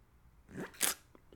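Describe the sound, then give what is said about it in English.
A quick slurping sip of hot coffee, one airy hiss of drawn-in breath, followed by a couple of faint mouth clicks in otherwise quiet surroundings. “Quick sip of coffee.”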